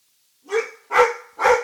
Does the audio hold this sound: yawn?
no